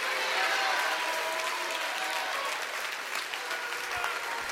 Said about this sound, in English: Would you clap your hands all over this house tonight?